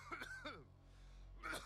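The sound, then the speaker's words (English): A man coughs uncontrollably in a rapid series of harsh, raspy coughs, a quick cluster of hacks, a brief pause, then another strained cough burst, with no talking. “He coughs uncontrollably.”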